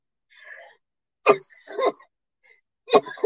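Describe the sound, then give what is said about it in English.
Three harsh coughs burst out, loud and abrupt, with brief quiet gaps between them and a faint breathy sound before the first; no one speaks. “I meant to hit mic and I hit camera and you still heard the coughing.”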